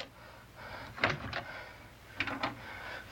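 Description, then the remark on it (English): A small closet door, with young children inside, being unlocked and opened: two short bursts of clicks and wooden scraping about a second apart, over a quiet background with no talking. “Tommy, unlock the door.”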